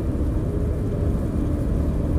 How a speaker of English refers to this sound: I hate these fucking trucks.